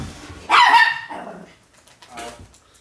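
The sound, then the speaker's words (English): A boxer dog lets out a loud, harsh bark, followed a couple of seconds later by a second, softer and shorter bark, with nothing else going on around it. “That poor boxer. Having to slam into a door to protect its owner.”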